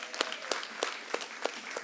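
Audience applause at a gathering where ushers hand out books: steady, rhythmic clapping at roughly three sharp claps per second, sounding like a small group in unison over a soft background wash, with no talking, after the speaker asks everyone to clap.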